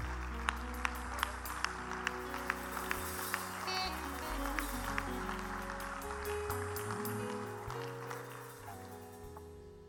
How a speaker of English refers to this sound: Oh, let's clap our hands all across this house.